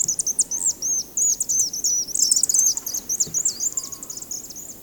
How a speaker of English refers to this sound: On the other hand, a swift song is high-pitched and rapid chirping. Sometimes it will sound like a buzzing insect, as we can hear in this next audio.